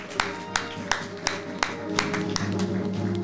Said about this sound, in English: So another hand clap for the ancestors.